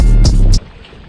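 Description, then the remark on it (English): Loud, blustery wind roars against the microphone out on the water on a boat during a fishing tournament for about half a second, with a couple of hissing gusts, then drops suddenly to a faint, low ambience. “It's super windy out here.”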